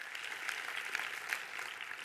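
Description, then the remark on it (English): A crowd applauds steadily for Pastor Brett's 25 years, many hands clapping at once in a dense, continuous patter that stays fairly even throughout. “And so I just want to give Pastor Brett a hand clap for those 25 years he and Cynthia.”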